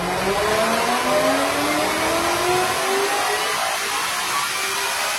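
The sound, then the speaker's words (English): A GT500 with a stock engine and DCT transmission, fitted with a 3.8-litre Gen 5 Whipple twin-screw supercharger making 1300 horsepower, screams high in its rev range, its pitch climbing steadily as it accelerates, loud with a sharp whining edge and no talking. “Just listen to it high up in their rev range, that is unreal.”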